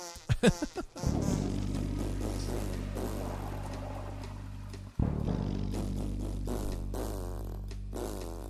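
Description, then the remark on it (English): A couple of short sputters, then two long, low, buzzy fart sounds, each lasting several seconds with a steady rumbling drone and a brief break between them. No one speaks. “Farts are amazing.”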